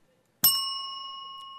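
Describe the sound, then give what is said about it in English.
A single bright game show ding strikes sharply after a brief silence, then rings on as a steady, shimmering metallic tone that barely fades, with no voices. “He's got the buzzer technology down.”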